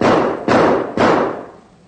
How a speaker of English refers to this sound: Our recording opens with a duet for flute and harp. But to continue, the harp and flute passages are followed by a series of gunshots.